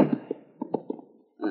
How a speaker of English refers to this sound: Congratulations, strong man. You pushed open the door.